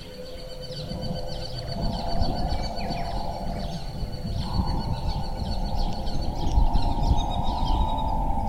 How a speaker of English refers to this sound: Good bird life.